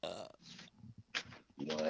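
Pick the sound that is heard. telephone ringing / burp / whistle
burp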